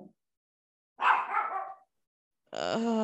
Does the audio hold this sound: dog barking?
yes